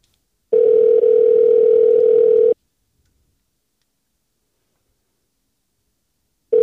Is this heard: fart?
no